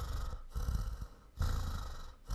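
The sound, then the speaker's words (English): Heavy breathing right into a microphone, with long rushing breaths and brief pauses between them, a loud windy hiss and a low rumble, and no talking. “Sorry if I'm breathing.”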